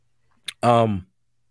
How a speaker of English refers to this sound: I'm sorry, I'm clicking on these new websites. I got to make sure that they're safe, right?